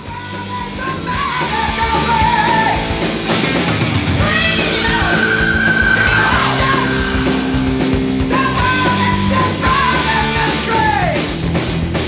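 A loud, dense heavy metal song from a 1982 album plays throughout, with distorted guitars, pounding drums and high, screaming vocals wailing over the driving band.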